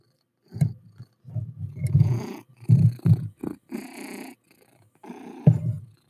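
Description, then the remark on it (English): A cat purrs loudly, a rumbling low buzz rising and falling in repeated breathy pulses with short pauses between them. “We can hear you purr. You're purring loud.”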